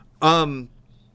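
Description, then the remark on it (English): A single drawn-out meow from a female cat at a theater, loud, with a bright tone that bends downward in pitch before fading into quiet room noise. “Do you have a cat? Or is that my cat? It's your cat.”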